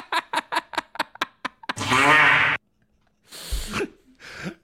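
Comic fart sound effects: a rapid sputter of short bursts speeds up into one long, buzzing, rasping blast, followed after a pause by two shorter, hissier squeaks.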